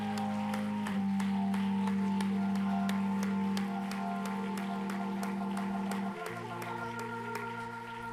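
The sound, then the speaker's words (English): An audience at a morning worship service claps hands for about 20 seconds in a steady, even rhythm, sharp claps landing together over a loud sustained organ or keyboard chord that shifts pitch partway through. “Come on, for 20 seconds, let's just clap our hands and send a signal to the spirit world.”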